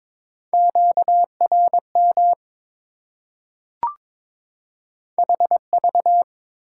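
Morse code beeps at a steady 22 words per minute, sending common QSO elements: clusters of short and long tones of one pitch, a pause broken by a single sharp click, then another run of beeps.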